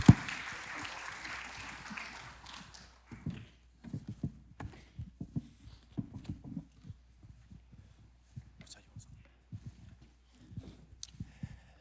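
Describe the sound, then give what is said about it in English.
A church audience applauds two guests coming up, a dense burst of clapping for a few seconds, then it dies away, leaving scattered footsteps and light knocks of movement. “Yeah, give them a hand.”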